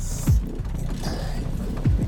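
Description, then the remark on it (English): Two heavy metallic clunks, about a second and a half apart, as a rusted-shut van side door is forced and jerked, with grinding, rattling mechanism noise between them, fairly loud. “God damn it! It's rusted shut or something.”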